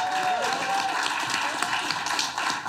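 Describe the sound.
Audience applause fills the whole stretch, a dense, steady wash of many hands clapping at once, fairly loud, with scattered voices and cheers mixed in.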